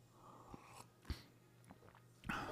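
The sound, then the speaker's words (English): Someone quietly sips hot coffee, a few short slurps and soft mouth sounds spaced out over a couple of seconds, with no talking. “Let's have a sip of coffee and we'll pray.”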